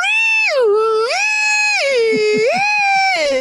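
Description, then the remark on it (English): A voice imitates a two-tone smoke alarm from a hardwired home system, wailing loudly and continuously as it swings back and forth between a lower and a higher pitch, about four alternations in a few seconds. “But it's not like beep, beep or anything like that. It's this weird two conflicting frequencies.”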